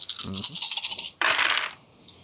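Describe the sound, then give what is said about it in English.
A handful of dice, rolled to resist drain in a game, clatter and tumble across a hard surface in a rapid, bright rattle, followed by a second louder burst of rolling clicks that quickly dies away. “You can do that with 10 dice because good thing those modifiers don't hit in.”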